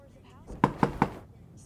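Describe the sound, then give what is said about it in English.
Three quick, evenly spaced, sharp knocks on a door, standing out against a quiet, low background hum. “did you hear me knock?”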